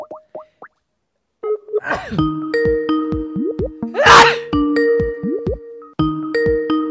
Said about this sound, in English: Oh, I'm gonna sneeze.